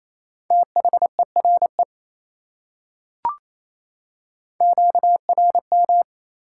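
Quick Morse code (CW) beeps at 28 words per minute in a steady mid-pitched tone, sent in two short groups of dots and dashes separated by a pause with a brief click in between.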